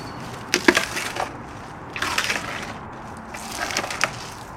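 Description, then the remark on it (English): A male elephant crunching palm fronds: three loud bursts of dry, splintering cracks and crackles, each lasting about a second, with quieter rustling between them and no talking. “And he loves palm. He's going to give you some good crunching sounds here.”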